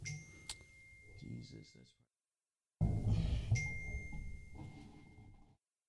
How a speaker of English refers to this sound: Should have put my phone on silent in the first place.